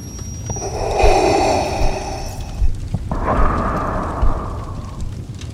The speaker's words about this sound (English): Grabbing the face of his helmet, he put it back on, with a mechanical sealing noise locking in his fate. He left the flaming room, breathing heavily into the night.